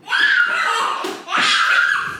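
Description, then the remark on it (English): A young girl, a daughter at home, screams in two loud, shrill, sustained bursts, each about a second long, with a brief break between them and no other talking. “And that's my daughter screaming too.”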